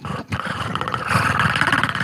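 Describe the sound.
A person imitates the voice of the Predator with their own voice, a rough, guttural, rattling snarl that briefly pauses, then swells louder and harsher, sustained over about two seconds with no words.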